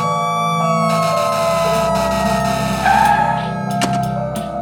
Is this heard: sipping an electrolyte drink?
no